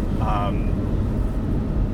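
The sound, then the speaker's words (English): Steady low road rumble fills the cabin of a moving rental Ford Focus, a dense continuous drone with a brief faint voice-like tone near the start. “We're in a Ford Focus.”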